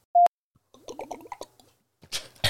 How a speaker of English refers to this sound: You always drink your water, the funniest sounding thing in the entire world. And it's so funny, like, I can drink water right here in front of, like, the mic, and you just don't even hear it. But, like, for you, you're like, go, go, go, go, go, go